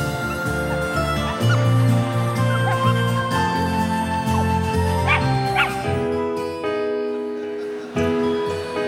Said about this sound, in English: Well, it looks like we got some new dogs. Look at you. How cute.